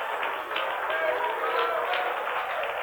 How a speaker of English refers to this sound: Let's clap again and shout with our voices as unto the Lord. For it is written, "Clap your hands, all ye people, and shout unto the Lord with the voice of triumph."